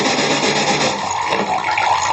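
A steady stream of water runs from a tap, a continuous splashing hiss at an even, fairly loud level throughout with no voices, as a balloon rubbed with wool is placed near the stream, which is attracted to it.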